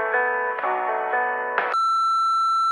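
A short run of stacked electronic tones, then a steady, loud voicemail answering-machine beep that holds as one unbroken pitch until the end. No one speaks.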